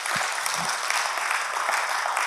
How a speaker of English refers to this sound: Can somebody clap your hands to God today? You don't need to be like a bunch of church mice. Come on.